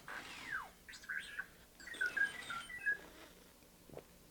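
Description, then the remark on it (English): The droid R2 beeps and whistles in quick, chirpy bursts, with high warbling tones and sliding pitch sweeps scattered over a few seconds, fairly soft, with no one talking. “So I'm going to take a breath, have some water, and you can listen to R2.”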